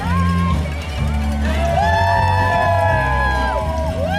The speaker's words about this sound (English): Just as the coronavirus was starting to hit the US, Los Angeles had its last major public event before the stay-at-home order, the LA Marathon. If you could only see the colorful costumes, the smiles, and the family cheering their loved ones.